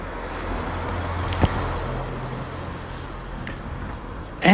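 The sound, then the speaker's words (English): A combustion-engine (not electric) car passes by, its engine a steady low rumbling drone under broad road noise, with a brief sharp knock partway through and a louder burst of noise right at the end. “Ah, I'm sure that's not an electric car.”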